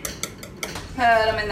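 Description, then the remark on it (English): A whisk clinks against a bowl of eggs mixed with a little salt, pepper, sugar and whipped cream in a few quick, evenly spaced taps, then a steadier, ringing hum carries on. Nobody speaks. “So then you want to crack them, put them in a bowl, add a little salt, add a little pepper, add a little sugar, add a little whipped cream, whisk it together.”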